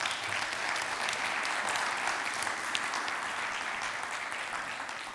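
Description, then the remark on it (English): A church audience claps steadily in a quick round of applause thanking the deacons, sustained and dense, holding an even loudness for several seconds before easing slightly toward the end, with no voices standing out. “And it would just show some appreciation for the work that all of our deacons do to just say thank you to her and thank you to all the deacons by just a quick round of applause, because they do a lot.”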